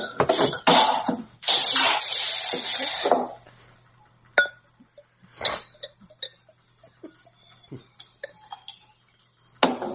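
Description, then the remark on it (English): A few sharp metallic clicks and a breathy hiss of a bottle of Adnams Ghost Ship pale ale (4.5% alcohol) being opened, then scattered light clinks and taps against glass. “So let's pop this one and see how it goes.”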